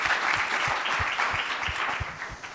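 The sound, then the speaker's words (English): An audience claps steadily, a dense wash of many hands at a fairly strong, even level throughout, with a few louder individual claps standing out and no voices heard. “Give her a round of applause, you guys.”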